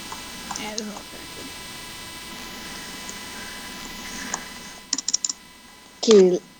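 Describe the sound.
Quick, light taps of someone typing on an iPad's on-screen keyboard, a short cluster of clicks over a faint hum, followed by a brief burst of voice at the end.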